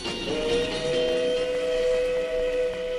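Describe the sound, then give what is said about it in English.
A steam train whistle sounds one long, steady, loud blast, holding its chord for several seconds over the hiss and rumble of the moving train as it makes a test crossing over a newly constructed trestle bridge on the western plains of the United States. No one speaks. “The origin of the Green Lantern begins years ago, out in the great western plains of the United States, as a train makes a test crossing over a newly constructed trestle bridge.”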